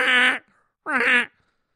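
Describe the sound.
A person imitates a blue heron's quack with two loud, raspy, nasal squawks, each about a third of a second long, separated by a short pause. No one speaks.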